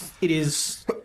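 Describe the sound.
A single sneeze: a short voiced intake breaks into a sharp, hissing burst, followed by a brief catch of breath just after.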